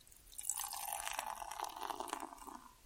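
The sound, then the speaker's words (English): Beer from a freshly opened bottle pours steadily into a glass for a few seconds, a continuous gurgling splash with a bright fizzing hiss, and no voices. “And the pour?”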